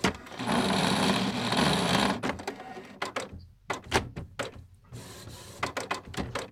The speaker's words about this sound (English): That was a printer failing to start properly. So just a printer is just being a printer then?